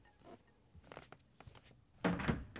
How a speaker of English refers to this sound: She opens another door. It's Martha and Dennis's bedroom.